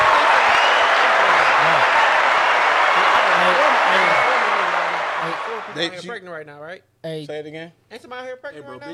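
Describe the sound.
A loud, dense burst of applause from a crowd fills the first five seconds, then tapers off as a man begins speaking over the quiet.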